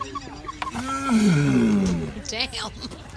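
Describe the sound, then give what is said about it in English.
A mating turtle in the UK lets out a long, low groaning moan that slides downward in pitch, loud, with a few shorter rasping grunts around it. “This is a new turtle sex.”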